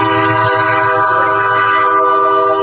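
A loud, sustained train horn sound effect, used to mute swearing, blares steadily for its full length, a thick chord of harmonic tones with a low rumble underneath, dominating.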